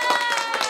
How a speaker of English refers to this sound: some clapping or some cheering? He did it!